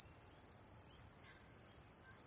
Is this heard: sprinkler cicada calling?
yes